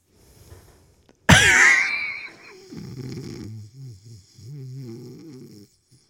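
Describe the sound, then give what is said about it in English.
Someone fakes a snore, as if dozing off while recording: a sudden loud, raspy snort, then several drawn-out, throaty voiced breaths, after a quiet start. “What like if we just did the 24-hour podcast where we just doze recorded off and snore for like 10 seconds?”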